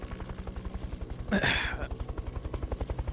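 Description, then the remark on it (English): A helicopter's rotor chops in a rapid, steady thumping rhythm as it approaches from above, coming over the trees, with a brief louder rushing burst partway through. No one speaks. “You start to hear like a helicopter propeller from above getting closer, coming over the trees.”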